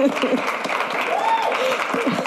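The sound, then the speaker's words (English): A crowd applauds the GSport newsroom steadily, a dense wash of clapping with whoops and raised voices mixed in, holding a fairly even loudness throughout. “And I think we deserve another round of applause for the GSport newsroom.”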